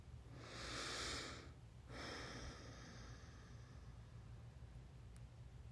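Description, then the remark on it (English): A slow, normal breath drawn in through the nose and then let out through the nose during a guided relaxation exercise, two soft airy rushes in sequence, followed by quiet. “Just a normal breath, breathing in and out your nose, receiving all this energy, relaxing down.”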